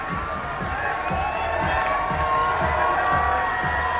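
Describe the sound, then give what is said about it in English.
A large crowd of fans cheers and shouts continuously as the women's team party bus passes, a loud, dense roar of many voices with high whoops rising above it, while a steady low rhythmic thumping pulses underneath throughout. “Oh, just listen to that.”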